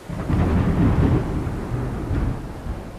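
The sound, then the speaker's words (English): A heavy thunderstorm with deep, rolling thunder rumbling continuously and loudly over a steady hiss of rain. No voices. “The storm was on them quickly.”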